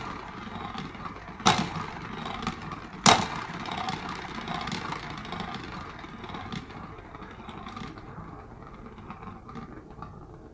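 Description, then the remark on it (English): A small motorized cat toy whirs steadily up close, a continuous buzzing mechanical drone broken by two sharp clicks early on, then fading slightly toward the end. “I forgot to, I'm back downstairs, so you can hear what the cat toy sounds like when you're right next to it.”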